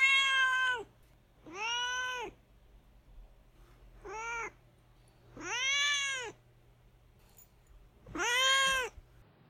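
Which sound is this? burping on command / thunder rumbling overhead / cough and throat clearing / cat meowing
cat meowing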